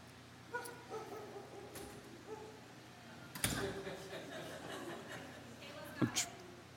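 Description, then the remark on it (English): A dog barks and yips a few times in a church, short sharp bursts spaced unevenly, over a low steady hum. “Hey, your dog's welcome to bark all through church.”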